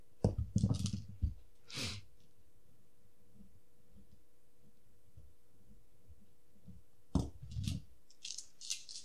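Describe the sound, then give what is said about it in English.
A handful of dice, rolled for damage in a game, clatters and rattles in a burst, then goes quiet with only soft low thumps, before another short rattling tumble near the end. Fairly loud, with no talking. “Oh my gosh, there's so many dice.”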